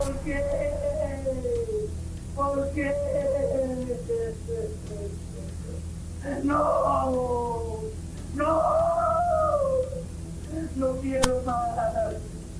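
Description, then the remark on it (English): Serial killer Luis Garavito, the perpetrator, screams and shouts in long, wailing, anguished outbursts, about five strained cries separated by short pauses, over a steady low background hum. “The screaming and shouting you just heard was not from the victim, but the perpetrator.”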